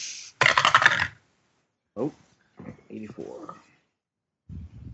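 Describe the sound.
A short rattling clatter of dice rolled for mythos rolls across a table lasts about a second, followed by a few brief murmurs and quiet voices.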